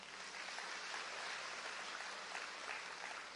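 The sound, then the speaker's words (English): A crowd gives a big clap offering, clapping steadily for a few seconds, a dense, even wash of many hands with no pauses, loud and sustained throughout with no voices over it. “So we've got a big, big clap offering.”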